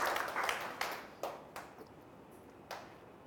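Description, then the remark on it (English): An audience claps in a brief burst of applause that quickly thins out to a few scattered, sharp claps before fading away. Soft and without any voices. “Yeah, you can clap.”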